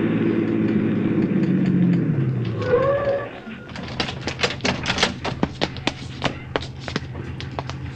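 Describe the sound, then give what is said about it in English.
A police squad car's engine rumbles and winds down as it pulls up and slows to a stop with a brief squeal, followed by a run of sharp, irregular clicking taps. “Park behind that squad car pulling up.”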